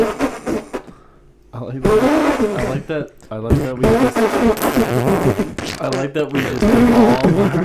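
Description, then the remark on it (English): Someone blows wet, sputtering raspberry noises with their mouth, imitating farts in several loud bursts, with laughter and voices mixed in. “I like that we devolve our every episode just becomes poop noises or cum noises.”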